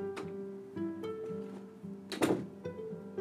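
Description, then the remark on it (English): A door shuts with a single dull thump, over a steady humming tone and a few faint knocks of movement before it. “Shut the door, okay?”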